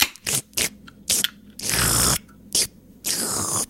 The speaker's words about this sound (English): I'm sighing and reaching for one of your trademark cafe lattes in a can. Oh, here it is.